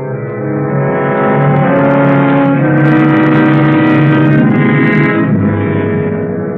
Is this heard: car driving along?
yes